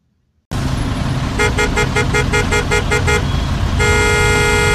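A car horn honks in a quick series of about nine short, evenly spaced beeps over a rumbling engine, then blares in one long sustained blast, loud.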